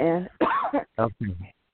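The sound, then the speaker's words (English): A person coughs, a short run of three or four rough, throaty bursts over under two seconds, partly voiced and fairly loud, with no words in between. “Sorry. I just feel cough.”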